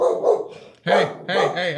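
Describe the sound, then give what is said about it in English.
A pet dog named Styles barks loudly, letting out a few drawn-out, harmonic barks in quick succession with brief gaps between them. “My dog is barking.”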